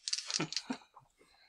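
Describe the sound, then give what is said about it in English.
Dice clatter across a tabletop in a quick burst of hard, rattling clicks, then a few softer taps as they tumble to a stop. Fairly loud, with no voices. “After this roll, remember to re-roll an effect dice if you get it back after this.”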